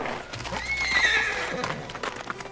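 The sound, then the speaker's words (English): A white stallion whinnies loudly in the afternoon sun, a shrill wavering neigh lasting about a second, with faint hoof clops and rustling in the background. “And for once, the horse was there. A white stallion, glittering in the afternoon sun.”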